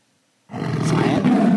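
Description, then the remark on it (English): After a moment of silence, a lion's roar erupts as Zion the Lion appears at Crosslink: a deep, loud, rumbling growl that holds steady without pause and carries on to the very end. No one speaks. “Everybody meet Zion the Lion.”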